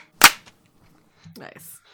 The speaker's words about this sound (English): Anyways, ready to clap, guys? Yes. 3, 2, 1...